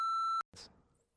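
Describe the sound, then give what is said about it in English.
A steady, sustained censor bleep tone plays for under half a second, then cuts off abruptly, followed by a brief burst of muffled noise that fades away. “That's the sort of thing that I need to beep.”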